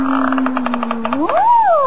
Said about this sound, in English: Look, someone's opening the door.